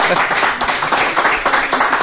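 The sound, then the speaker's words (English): An audience claps steadily for about two seconds for a knock-knock joke, a dense, fairly loud patter of many hands with a faint murmur of voices mixed in. “Yes, it's you can clap for that joke.”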